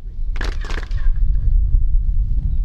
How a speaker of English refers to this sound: The pyramid at Chichen Itza towers over the landscape. Sound echoes as tour guides clap to demonstrate the extraordinary acoustics of this sacred place.